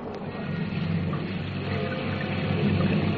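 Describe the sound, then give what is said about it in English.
Steady rain pours down in a continuous, dense wash of hiss with a low rumbling undertone, holding an even loudness throughout and no voices. “Until the rain.”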